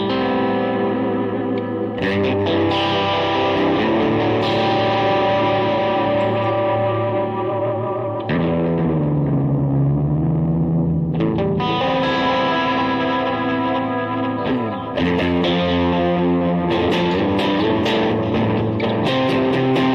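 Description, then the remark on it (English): A Stratocaster electric guitar fitted with a Vega Trem tremolo bridge, played loud and heavily effected with distortion and echo, its sustained chords swooping down and back up in pitch in whammy-style dives, no voices. “I'm using the Strat that has the Vega Trem.”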